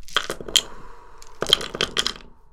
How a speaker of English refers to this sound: Dice.